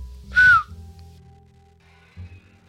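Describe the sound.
A single short, sharp human whistle, slightly falling in pitch, given as a command for an animal to stay, followed by quiet with a low background rumble.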